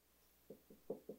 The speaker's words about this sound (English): You're like, was that a knock?